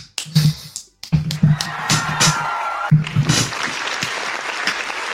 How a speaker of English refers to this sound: Oh, cue up that freaking round of applause, brother.